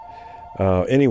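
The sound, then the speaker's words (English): A telephone rings with a steady electronic tone for about half a second, moderately loud, before a voice starts speaking over it. “Oops, phone's ringing.”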